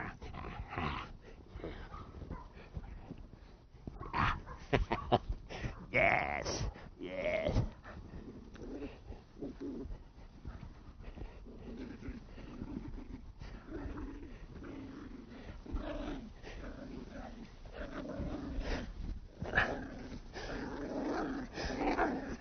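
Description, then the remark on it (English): A female puppy with strong prey drive growls aggressively in long, rumbling bursts for the whole stretch, fairly loud, with a person briefly speaking a couple of words over it. “You can hear the aggression coming in her.”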